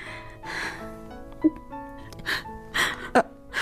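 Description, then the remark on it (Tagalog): A woman crying, broken sobs with shaky, breathy gasps and a few sharp catches of breath, whimpering tones rising and falling over several seconds with no clear words. “Bakit ka umiiyak?”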